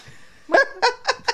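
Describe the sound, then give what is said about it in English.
A dog named Simba barks four times in quick succession indoors, fairly loud, each bark short and sharp with a slight honking quality; no one speaks. “Our dog Simba's in here chilling.”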